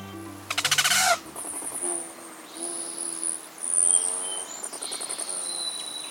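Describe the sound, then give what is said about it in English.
High, thin rufous hummingbird chips and squeaky calls repeat over a few seconds, opening with a loud burst of rapid, buzzy wing trilling; hummingbirds migrating north; no voices. “Here they come. Rufous hummingbirds, ruby throats, and others are migrating north after a hot, dry winter in sunny Mexico or Central America.”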